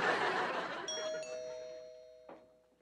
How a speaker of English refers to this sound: But whoever he is, he's about to ring your front doorbell.